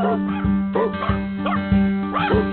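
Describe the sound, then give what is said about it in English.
A dog barks repeatedly, about four or five loud, evenly spaced barks, over a steady musical backing with sustained tones, at the start of a song about dogs. “And I got to go out on a dog song, I guess, for you.”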